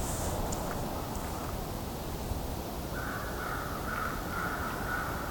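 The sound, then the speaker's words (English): Several crows caw repeatedly, with a raven calling among them, all over a steady rushing outdoor background noise. No one speaks. “As you can hear, there's also a lot of crows here. At least one raven also calling.”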